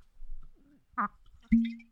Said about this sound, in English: And this is one of their hand-selected barrel picks, and it is amazing. That's what I'm going to go with. So, you know, let's crack this open.